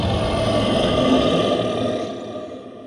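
A menacing, enormous monster throws its head back and lets out a blood-curdling scream: one loud, harsh, roaring cry with a gritty growl underneath, held steady for about two seconds before trailing off.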